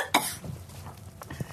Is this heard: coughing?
yes